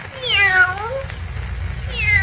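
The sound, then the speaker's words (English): A fawn-colored Siamese cat lets out a drawn-out, falling meow, then starts a second cry near the end, with a low steady rumble underneath and no talking. “I know now what makes that cat talk.”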